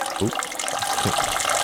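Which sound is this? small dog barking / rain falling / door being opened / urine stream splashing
urine stream splashing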